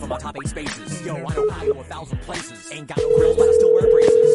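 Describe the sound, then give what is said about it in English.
A couple of short telephone keypad beeps sound over busy background voices and music, then a loud, steady dial tone takes over and holds to the end, as a phone call is placed to Jason Ellis. “The only problem is, don't call the show right now because we got to make a phone call here and get the one and only Jason Ellis on the program.”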